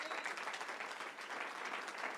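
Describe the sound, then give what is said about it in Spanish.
An audience applauds the Lord steadily, a dense, even wash of many hands clapping at once with no pauses and no voices standing out. “Tiene un aplauso al Señor.”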